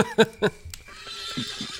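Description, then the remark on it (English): A voice imitates a horse's whinny with two sharp bursts, followed by softer, breathy snorting and nickering sounds trailing off. “I'm horseying. I'm horseying. Don't I have a pretty mane?”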